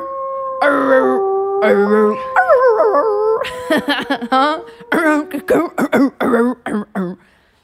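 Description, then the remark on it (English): Voices imitate wolves howling, with long wavering overlapping howls that rise and fall, then break into a run of short, choppy yips and barks, loud. “Come out the wolves howling.”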